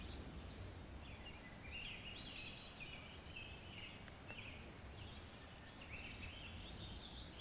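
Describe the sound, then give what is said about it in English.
Faint birdsong drifts through steady outdoor ambience, with thin, warbling calls repeating throughout. No one speaks. “The birds are singing.”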